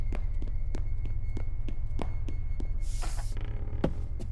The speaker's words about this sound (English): But that's when I realized. Footsteps. Outside.